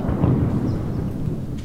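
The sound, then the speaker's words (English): A deep, sustained rumble of explosions in Kherson, a short walk away, rolls on without a break: heavy low booming that stays fairly steady in loudness, with no voices present. “You can hear more explosions a short walk away”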